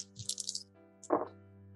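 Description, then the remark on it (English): Dice are rolled to decide a dodge attempt. They rattle in a quick cluster of bright clicks, then after a brief pause a single duller clatter sounds as they settle. There is no speech, only a low steady hum underneath. “And it will attempt to dodge, but it won't do very well because I'm rolling the dice.”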